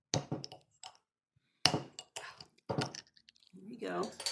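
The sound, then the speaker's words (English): A bottle of home-brewed beer is opened with a sharp pop and short fizzy hiss, surrounded by scattered clicks and handling noises, with a voice murmuring at the end. “So yeah, let's give it a pop. Let's open it up.”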